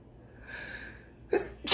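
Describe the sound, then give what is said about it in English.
A loud sneeze: a drawn-in breath builds for about a second, then two sharp explosive bursts follow in quick succession, with no talking. “Bless you.”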